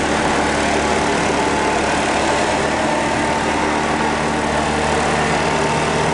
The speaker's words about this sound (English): What is this jackhammer?